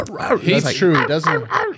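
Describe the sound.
A man imitates a dog's bark with soft, yappy vocal bursts, several short repeated yelps in quick succession, moderately loud, more whiny than aggressive, sounding like a terrier.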